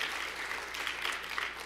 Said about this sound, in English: And this beautiful young couple has just been engaged to be married. Amen? Let's give them a nice, big, huge round of applause.